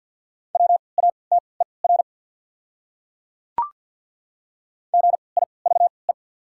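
Morse code beeps at 50 words per minute with triple character spacing, spelling one of the 200 most common words, on a steady mid-pitched tone, quick dots and dashes in two clusters separated by a long pause with a single sharp click between them.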